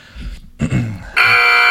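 A loud, harsh electronic buzzer cuts in after some brief low rumbling and holds a steady, rasping tone to the end, rich in bright overtones.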